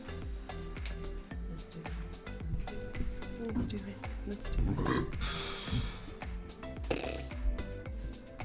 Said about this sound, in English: That burp.